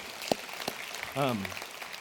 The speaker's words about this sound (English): Thank you. You can clap for that.